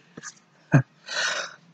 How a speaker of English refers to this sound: So, excuse me, just coughing.